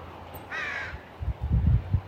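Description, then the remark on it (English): A single harsh bird call rings out for about half a second, clear, followed by low muffled thumps and rumbling. “We don't need to name the bird, even know the bird.”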